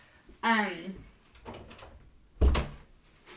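A door swings with a short creaky squeal, then is shut quickly with a solid, heavy thud about two seconds later.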